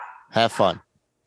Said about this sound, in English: Shut that dog up. Damn dogs. I swear to God, they're interrupting.